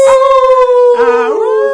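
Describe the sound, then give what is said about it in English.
A person imitates a wolf howl with a loud, sustained steady note, and a second wavering howl joins halfway through, sliding down in pitch before both fade. “Lone wolfing. She wolf.”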